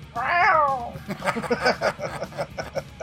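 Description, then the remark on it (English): A cat gives one loud, drawn-out meow, sliding downward in pitch, followed by a few seconds of quieter rustling and soft, choppy murmuring sounds. “And Tommy the Cat's here, too.”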